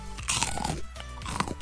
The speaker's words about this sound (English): Oh, I'm sorry, I'm still chewing. Hold on. Get rid of this thing here.